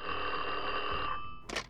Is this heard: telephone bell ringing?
yes